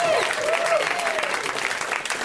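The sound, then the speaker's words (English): An audience at a live show claps steadily for comedian Alan Strickland Williams in a dense, sustained, loud burst of applause with a few whoops mixed in, filling the whole moment without pause. “Let's hear for Alan.”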